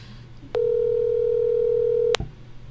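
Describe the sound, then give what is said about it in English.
A steady, single-pitched telephone call tone holds for about a second and a half, starting and ending with sharp clicks, over a low background hum. No one speaks. “He's not going to answer.”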